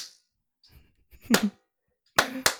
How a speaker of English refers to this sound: Yeah, go to it. 3, 2, 1, slap.